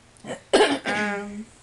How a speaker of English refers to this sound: My bad, I keep coughing.